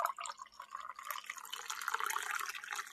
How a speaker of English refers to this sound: I'm hoping you can hear that. I can hear that. You're pouring water, right? You're not recording this in your bathroom? No, I'm not in the bathroom. This is coffee.